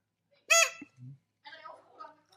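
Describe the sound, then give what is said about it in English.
A single loud, raspy crow caw sound effect rings out, followed by a low grunt and then muffled voices talking in the background. “And she put on the crow.”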